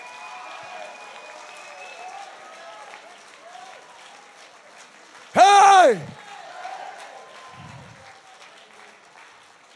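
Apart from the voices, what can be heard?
audience clapping hands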